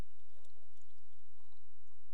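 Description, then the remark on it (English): Water pours steadily into a glass for a couple of seconds, a continuous splashing trickle, with no voices. “So that's for me. That's a glass of water.”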